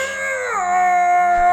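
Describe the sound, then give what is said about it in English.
A loud, drawn-out acted scream from a single voice, starting high, sliding down in pitch and then holding a steady, wavering wail with a howl-like quality for over a second. No words. “That's your scream.”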